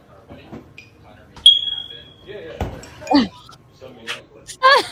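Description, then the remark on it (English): A single shrill electronic beep from a smoke detector in a kitchen rings out and fades over about a second, surrounded by scattered squeaks, thumps and faint vocal-like chirps. “Okay, so this is what a smoke detector does when you're in the kitchen.”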